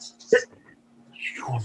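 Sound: sneeze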